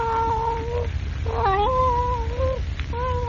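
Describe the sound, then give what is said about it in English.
A Siamese cat, curled up on a man's lap, gives long, drawn-out meows, three in a row with wavering, sliding pitch, fairly loud over a low background rumble. “Rooted to the chair, Jimmy stares in frozen, wide-eyed fear at the Siamese cat, which, curled up on his lap, looks up at him out of its strange blue eyes.”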